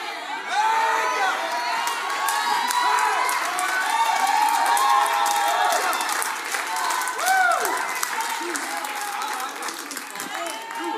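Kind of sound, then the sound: crowd, audience shouting and cheering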